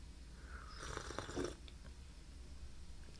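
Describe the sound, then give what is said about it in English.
A brief, soft slurping sip of Intelligentsia coffee lasting under a second, with a gentle airy rush and faint wet mouth sounds, followed by quiet low background hum. “Take another sip here.”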